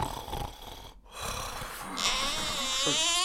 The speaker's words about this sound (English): Please shut up. For the love of all that is holy, stop snoring.